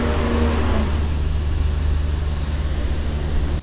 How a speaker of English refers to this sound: So sorry about that loud truck, and I had trouble turning the mic off.